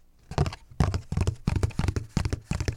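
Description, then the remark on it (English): Fingers tap out a galloping rhythm on a hard surface, imitating horse hoofbeats: fairly loud clusters of quick knocks repeating steadily for a few seconds, with no voices. “We use your fingers. Mark, does that sound like a horse?”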